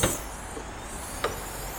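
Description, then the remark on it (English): Two short, solid thuds of vehicle doors closing, about a second apart, over a steady low engine rumble with no voices. “Closing doors.”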